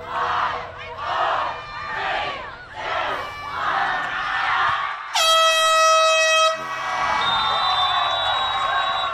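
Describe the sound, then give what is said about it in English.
A large crowd at a championship soccer game between Alcuin School of Dallas and Chinkapin of Highlands chants a loud, rhythmic countdown of the final 10 seconds, one shouted beat per second, until a long blaring air horn sounds; cheering and yelling carry on after the horn stops. “We're in the final 10 seconds of the championship contest. It'll be counted down by the crowd.”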